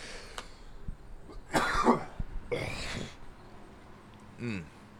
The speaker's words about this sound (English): Sorry for like the coughing and shit. You know, this is, I don't, like I said, I'm not really used to bongs and stuff. So this is like fucking just sent me to the stratosphere and I'm just trying to get my throat right.